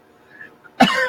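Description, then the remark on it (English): After a near-silent moment, a loud, harsh, persistent cough bursts out, rasping and throaty, with a second push of coughing right behind it. “See, I know I've had that constant, persistent cough for such a long time.”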